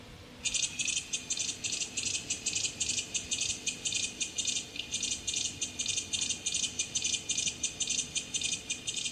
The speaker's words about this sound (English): Yeah, it was nicknamed Disco Beat Cicada by David Lane. It clicks a lot more than the chorus and the clapping cicada.